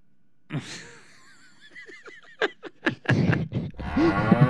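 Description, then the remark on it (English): A cow moos amid a jumble of other noises: wavering tones, a few sharp clicks and bursts, then a drawn-out, low, bellowing call rising near the end, fairly loud. “Where'd the cow come from?”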